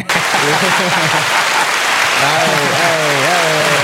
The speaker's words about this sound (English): Yeah, long applause.